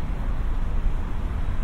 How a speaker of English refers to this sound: And you can feel those buses thundering by, like dinosaur-like.